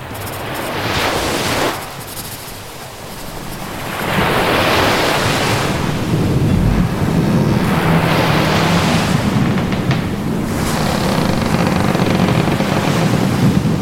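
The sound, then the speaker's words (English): Ocean waves surge and wash in repeated swells in a bay with a strong tide, while a strong wind blowing in roars across the microphone, loud, with no voices. “This is a strong tide, and the wind is in”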